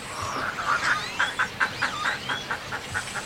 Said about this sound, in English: This tiny island in Laguna Madre, Texas, is a protected rookery and home to more than 400 species of birds, including white ibis, black-crowned night herons, as well as great blue ones, reddish egrets, and roseate spoonbills.